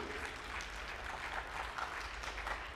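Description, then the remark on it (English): A church audience applauds steadily, a dense, even wash of many hands clapping at a constant moderate loudness with no voices rising above it. “Hey, let's clap for that.”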